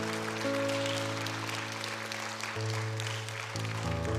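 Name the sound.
audience applauding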